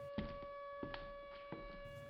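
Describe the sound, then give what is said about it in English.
A siren drones on a steady, unwavering pitch, fairly faint, with a few soft thumps and knocks sounding over it. No one speaks. “Why is the siren going off?”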